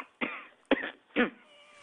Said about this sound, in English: I can hear you coughing. Oh, that's not me. Who's this? Who's on the line?